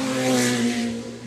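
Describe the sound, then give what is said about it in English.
A Ferrari supercar engine revs loudly in a brief, steady, throaty roar with a rich harmonic whine, easing off slightly at the end. No one speaks. “So to give up their time, their fuel, their tyre costs, their servicing costs on these cars, here's the Ferrari again.”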